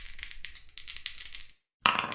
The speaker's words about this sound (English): All right, I'm going to roll. I want to roll my physical D100 here, I swear. I got an 81.